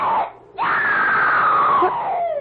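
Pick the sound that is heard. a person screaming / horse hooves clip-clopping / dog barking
a person screaming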